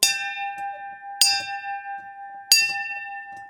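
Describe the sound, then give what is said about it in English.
A bell carried out to a beach by training instructors rings three times at steady intervals as trainees ring it to quit, each clear metallic strike leaving a long sustained ring that hangs between hits. Loud, with no voices. “And to quit, you rang the bell.”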